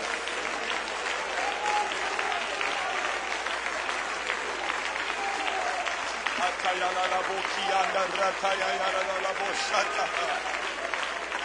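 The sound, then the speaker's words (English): A large group claps their hands unto the Lord in dense, continuous applause that stays loud and steady throughout, with many voices calling out and cheering over the clapping. “If you believe God is going to do a great work, would you now lift your voices and clap your hands unto the Lord?”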